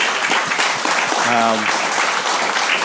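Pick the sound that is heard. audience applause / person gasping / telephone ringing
audience applause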